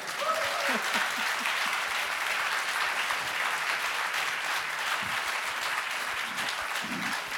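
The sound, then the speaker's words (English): Sustained audience applause, dense and steady clapping at an even volume throughout, with a brief voice or two faintly audible underneath near the start, in response to the mention of Bill Ruckelshaus being fired by Nixon. “I'll tell you, you don't usually get a crowd response like that for being fired.”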